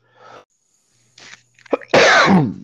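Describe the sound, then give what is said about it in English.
A single loud, explosive sneeze, preceded by a couple of short, breathy inhalations and a brief catch, then a burst of harsh, noisy sound that trails off over about half a second. “Bless you. Forgive me.”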